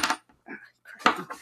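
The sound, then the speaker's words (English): Several bright metallic clinks and jingles of coins knocking together in short bursts, made as ASMR, with brief quiet gaps between clusters. “All right, now with the coins.”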